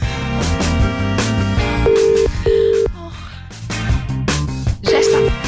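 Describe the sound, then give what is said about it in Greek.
A few short, steady electronic tones, like phone keypad beeps, sound one after another over a dense, loud musical background as a telephone number is dialed for a wake-up call on the Sok FM Morning Show. “Καλά, πάμε σε κανένα wake up call.”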